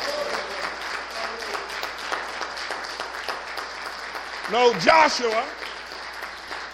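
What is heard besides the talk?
audience applause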